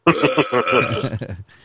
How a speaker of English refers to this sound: Anonymous has to go because he's burping his ass off. I really don't want to ever hear that again.